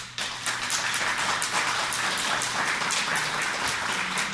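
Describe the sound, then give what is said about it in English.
An audience claps steadily for about four seconds in answer to whether the Democrats have the best chance of holding the White House in 2024 with Biden, a dense, even patter of many hands with no voices over it, holding at a fairly constant loudness before cutting off. “Clap if you think the Democrats have the best chance of holding on to the White House in 2024 with Biden.”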